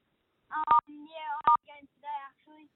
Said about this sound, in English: just watch out with the phone. If you push, just keep your hands away from the buttons because it sounds like you're accidentally pressing a number or two.